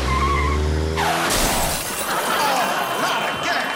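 Tires screech in a loud, rising skid for about a second, then a sudden violent crash bursts out, followed by a sustained clatter of shattering glass and scattering debris, recalling Pete's Beverly Hills car crash.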